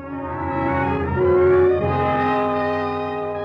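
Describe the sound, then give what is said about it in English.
A steady, droning bus engine hums loudly for a few seconds on a trip to Stanley Springs, its pitch briefly rising and swelling in the middle before settling back to an even rumble. No one speaks. “First by air, then by train, then by bus to Stanley Springs.”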